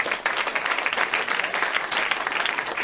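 An audience bursts into sustained applause for a chef, a dense, steady patter of many hands clapping at once, fairly loud and even throughout without any voices breaking through.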